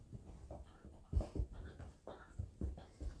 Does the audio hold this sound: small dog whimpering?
yes